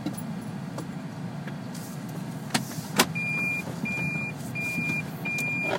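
Low engine rumble fills a car cabin, broken by two sharp clicks, then a steady series of four electronic warning beeps repeating over the hum. No one speaks.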